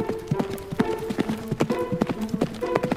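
A shabby old nag's hooves clip-clop in a steady, brisk rhythm of sharp knocks for about three seconds as its rider rides off, with a soft sustained tone running underneath.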